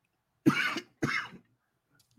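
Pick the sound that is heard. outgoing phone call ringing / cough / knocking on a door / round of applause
cough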